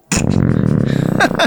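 A long, loud belch made while discussing and rating beers rumbles for more than a second, low and gravelly with a rough, fluttering texture, and ends in a couple of short, breathy bursts.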